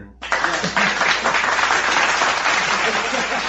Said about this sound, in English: It's kind of a lame applause, but yeah, well, it works. It's perfect.